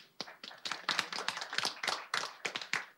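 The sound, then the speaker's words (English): Scattered hand clapping from a small group at a celebration, applauding Corporation Counsel Conrad Mallett: a quick uneven patter of sharp claps that stays steady and moderately loud for a few seconds, with no voices over it. “And at this point, let's just give him a round of applause as well, because this is a celebration.”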